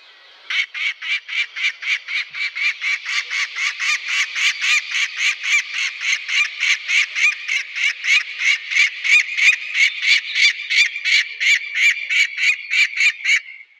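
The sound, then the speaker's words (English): Falcons squawk loudly and harshly in a long, steady run of rapid, evenly spaced calls, about three a second, unbroken for over ten seconds with no one speaking. “It's pretty squawky, isn't it? Set of lungs on those falcons.”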